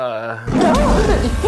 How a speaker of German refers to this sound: Ist das ein Tiger? Es kommt näher.